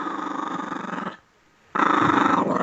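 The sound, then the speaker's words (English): A dog growls in two sustained, rumbling bursts separated by a brief pause, fairly loud, with no talking over it, giving a two-growl answer about a college football betting pick. “That's a two growl. Yeah, maybe three from Rusty there.”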